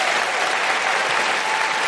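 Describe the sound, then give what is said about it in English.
Sustained, loud applause from the audience at the Queen Elizabeth Hall in London's South Bank Centre, a dense steady patter of many hands clapping at once with no break and no voices standing out. “Just a big round of applause for everyone at the venue here in the South Bank Centre, the Queen Elizabeth Hall.”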